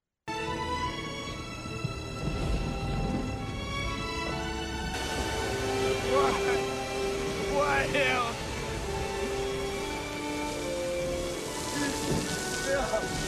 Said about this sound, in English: There's only rain coming down on him, and you can tell.